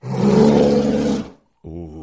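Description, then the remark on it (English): A deep, rumbling growl swells into a loud roar for over a second, then breaks off; after a short silence a shorter, steadier low growl begins. “It's got like a good like sub growl to it”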